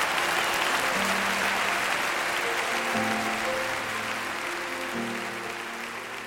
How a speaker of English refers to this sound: Well, that thunderous applause will wrap up this two-part Focus on the Family broadcast featuring David Ring.